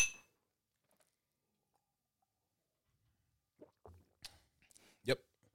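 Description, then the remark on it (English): A single bright clink of glasses in a toast before tasting the Boxer Grail rings out at the start and fades fast, followed by a long quiet pause and then soft rustles and mouth noises. “All right, so, cheers. Cheers.”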